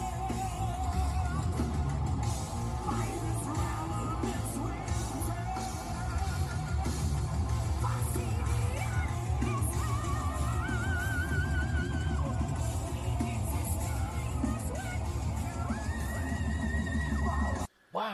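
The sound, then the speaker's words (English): A loud, dense metal track plays throughout, heavy distorted instruments under sustained sung vocals and harsh shrieks, cutting off abruptly just before the end. “I have heard him do that clean and those shrieks live.”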